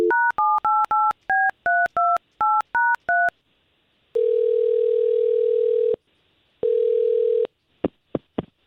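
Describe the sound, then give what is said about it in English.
A rapid string of about ten touch-tone dialing beeps, each a short paired tone, as a man's cell phone number is dialed, followed by two long ringback tones with a pause between and a few faint clicks at the end. “I'm going to call him right now.”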